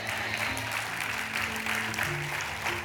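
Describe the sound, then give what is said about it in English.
Steady applause from a large crowd, a dense wash of many hands clapping at once, sustained and fairly loud throughout with a low hum underneath. “All right, now why are you clapping when God reveals and when he exposes and he removes?”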